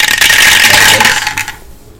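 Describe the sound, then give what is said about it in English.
A loud burst of many dice rolled for an attack in a tabletop role-playing game, clattering and tumbling across a hard tabletop, a dense rattle lasting about a second and a half before quickly settling into quiet. “I don't know, I thought he was rolling like 17 dice.”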